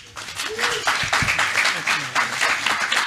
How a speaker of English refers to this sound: Excellent, come on, round of applause.